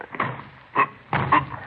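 Men straining to force a locked door, the only door into the room: a few heavy, irregular thumps and rattles as it's shoved and jolted, the last push a longer grinding burst, with no voices.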